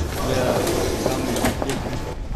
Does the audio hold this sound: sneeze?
no